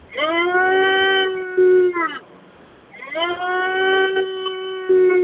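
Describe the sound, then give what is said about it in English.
A person imitates a red deer stag's roar: two long, loud, droning bellows, each held for about two seconds, separated by a short pause. “The time we got people on-air to do stag "roars"”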